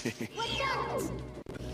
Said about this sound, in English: Oh! And the floor has started to move. Oh, it's the ceiling coming, smashing down on you. Watch out! The ceiling is falling down!